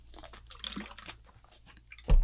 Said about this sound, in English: Hold on, I gotta take a drink of water because I'm sad and my throat's dry.